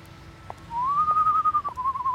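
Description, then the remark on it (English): A single person whistles a sustained, wavering tune that slides up and holds steady, clear, coming from a darkened alley, with faint background rumble and a couple of soft taps and no talking. “She didn't make it very far before she heard a whistle coming from a darkened alley.”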